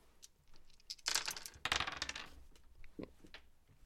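A handful of dice clatter and rattle across a surface in two main bursts as discipline dice are rolled for a tabletop game, followed by a lighter click and tap as one more drops and settles, fairly loud, no talking.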